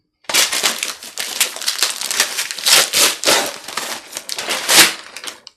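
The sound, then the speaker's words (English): Paper wrapping on a gift that feels like a book is torn open in a steady run of loud, crackling rips and crinkles that surge and ease for about five seconds, with no voices over it. “Maybe it's do you want me to rip it nicely, or do you want me to go for it dog style?”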